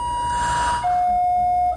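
A door opening, marked by a loud two-note electronic chime: a steady higher tone, then a slightly lower one held about a second, with no voices.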